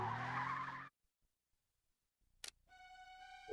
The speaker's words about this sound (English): All right, so then it shows him running away as an alarm goes off. And a super cool car goes driving off real fast.